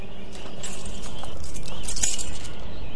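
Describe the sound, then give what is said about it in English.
Keys jangle and clink, a steady metallic rattle lasting a few seconds, as someone uses a key to open a safe. No voices are heard. “Here's the key of my safe. Go and take your jar.”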